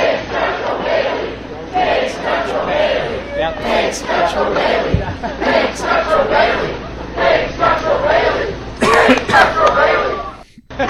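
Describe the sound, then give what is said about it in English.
A large crowd chants slogans in unison, going from "Medicare for all" to "big structural Bailey", loud rhythmic shouted phrases repeating over several seconds, with scattered cheers and a brief dropout near the end. “So, as you guys can hear, they go from chanting Medicare for all to basically just describing what's in front of them big by chanting structural Bailey.”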